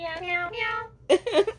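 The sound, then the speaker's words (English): A person imitates a cat, giving a few drawn-out meows in a low, deep voice, followed by a couple of shorter, brighter meow sounds. “Meow, meow, meow. And that's a deep kitty.”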